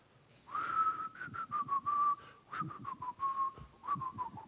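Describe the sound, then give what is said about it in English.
A person whistles softly, a thin wavering tune of held and sliding notes lasting a few seconds, fairly quiet, with faint background noise and no talking. “humming had turned to kind of a soft whistle.”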